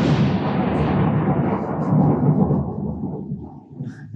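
A deep, rolling rumble of thunder over a steady roar of heavy downpour, loud at first and slowly fading over about four seconds, with no voices.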